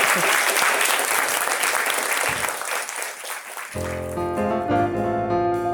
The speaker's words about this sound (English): Can we give Lori another round of applause? Thank you.